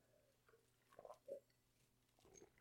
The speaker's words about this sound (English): Here's to 100 more. Yeah, absolutely. Let's have a cheers to that. Cheers. Salute. We're drinking.